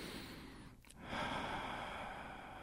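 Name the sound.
deep breathing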